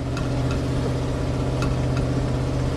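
The engine of a 1984 truck driving through Manhattan streets runs steadily, a constant low rumbling drone with a few brief rattles or clicks on top. No one speaks.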